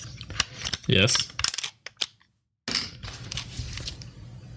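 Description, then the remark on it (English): A camera with its memory card removed fires its shutter in silent mode, giving a quick run of dry mechanical clicks and rattles, then a brief hush before more clicking resumes; a voice briefly speaks over it. “Oh, you want to hear it in silent mode?”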